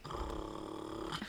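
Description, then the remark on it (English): A person's voice imitates a pit bull's growl: one sustained, rough, rumbling snarl held steadily for just over a second, fairly loud, with no other talk. “a bigger dog, a meaner dog, sort of pit bull-esque, and sort of growling”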